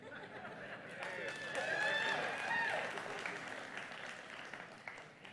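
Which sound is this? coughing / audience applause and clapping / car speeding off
audience applause and clapping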